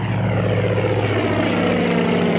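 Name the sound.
propeller plane taking off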